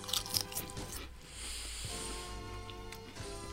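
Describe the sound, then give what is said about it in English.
Quiet crunching of chips being chewed, with a few crisp bites near the start followed by softer chewing over a steady low hum. “Keep eating those chips. It's great. They're very palatable. They're nice. They're a good crunch.”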